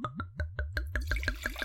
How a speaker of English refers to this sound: There's nothing better than the sound of a nice pouring wine. I know. When you haven't had one yet.